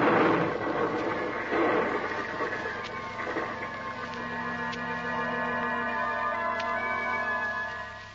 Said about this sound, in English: There goes another crate of chemicals. Captain Drummond, this fire's spreading as fast as lightning.